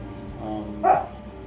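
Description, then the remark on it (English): A dog lets out one short, sharp bark for attention over a low background murmur of people talking. “He's fucking barking because she wants attention.”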